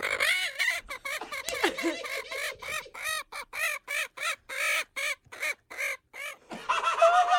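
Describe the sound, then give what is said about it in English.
A chicken clucks in a fast, steady run of short, sharp bursts, fairly loud, with no other sounds, as a woman tickles it. The clucks come in a quick rhythm that almost sounds like laughter. “Let's hear the sound of a woman tickling a chicken until it laughs.”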